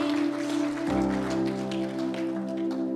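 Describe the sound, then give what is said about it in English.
An audience applauds in praise to Jesus, a dense patter of many hands clapping throughout, over a sustained organ-like keyboard chord that shifts to a new pitch about a second in. “don't do this often, but I'm going to ask, can we just lift up an applause of praise to Jesus right now?”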